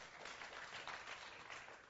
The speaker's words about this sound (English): You can clap, it's fine.